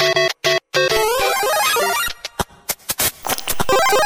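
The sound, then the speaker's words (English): A retro Super Mario video game sound effect of a squid being stomped: bright electronic beeps and quick sliding pitch sweeps, followed by a run of sharp, choppy bursts. Loud and busy, with no talking. “And now, the sound of a squid being stomped on by Super Mario.”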